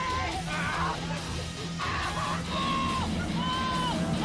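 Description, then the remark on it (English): Several voices yell and scream at once at McKamey Manor, a home haunt in San Diego, overlapping in loud, sustained shrieks with falling pitches over a constant crowd din, continuing without a break for the whole stretch. “It's just a bunch of people screaming.”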